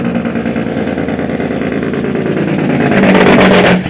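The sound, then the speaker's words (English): A loud truck engine rumbles, growing louder and peaking near the end as it drives past, with no talking over it. “Oh shit, a truck. Might get ran over.”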